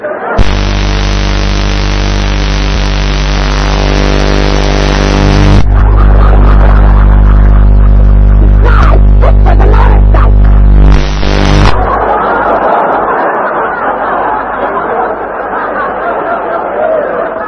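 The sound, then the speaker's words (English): A motorcycle engine runs at a steady idle, a deep buzzing rumble for about twelve seconds, then cuts off abruptly, leaving a murmur of crowd noise and chatter. “Motorcycle.”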